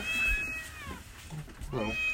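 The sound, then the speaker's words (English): A cat meows twice: a drawn-out, high whining call at the start, then a shorter rising-and-falling meow near the end, with muffled voices and room noise underneath. “It's a cat.”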